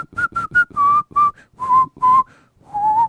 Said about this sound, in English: That was your best ending whistle, though. It was a better ending whistle, but it's because I regrouped there in order to prepare for it.